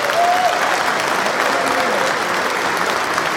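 A crowd claps steadily throughout, a dense, even wash of many hands applauding at a fairly loud, constant level, with a faint tonal whistle-like sound briefly audible near the start.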